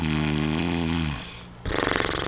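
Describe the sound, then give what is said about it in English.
A person imitates their own loud, exaggerated cartoon-style snoring: a long buzzing rattle on the inhale, a brief quieter pause, then a harsh snorting burst, heard alone. “And I snore like this. This is how I snore.”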